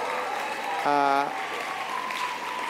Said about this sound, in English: So big round of applause for AYCC, which is the Australian Youth Climate Coalition.